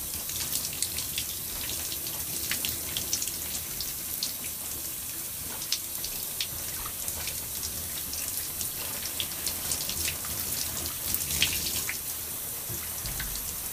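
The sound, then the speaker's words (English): Steady running warm water splashes and patters, a continuous hiss with small irregular drips and spatters, as water pours over hair and scalp while rinsing. No one speaks. “And the water temperature that I'm using is warm water.”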